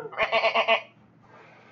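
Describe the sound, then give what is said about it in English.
A person imitates a goat's bleat with one quavering, pulsing cry, fairly loud, lasting under a second. It's followed by near silence and a sharp click at the end. “And now, again, you hear yourself slightly bleat as that happens.”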